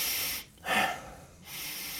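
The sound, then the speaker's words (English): Breathing demonstrated with no talking: a sharp, forceful inhale through the nose between two longer, airy breaths, the intake stronger than the release, in an inhale-emphasized breathing pattern. “The key is to do a few breaths, even while you're getting out of bed and preparing your morning coffee or water or whatever it is, and just start breathing in a way that's inhale emphasized.”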